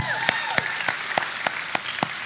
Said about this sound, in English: Well, good morning. Let's give God another round of applause.